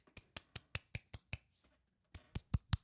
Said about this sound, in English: I can't clap too loud because we have neighbors and it's that time of morning.